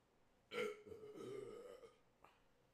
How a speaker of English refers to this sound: Got a burp.